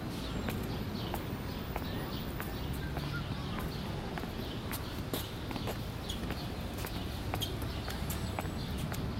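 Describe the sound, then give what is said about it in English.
Footsteps walking at a steady, even pace, each step a crisp tap, over a constant low rumbling background with no one speaking. “Try to walk to the sound of my footsteps so that we can stay together.”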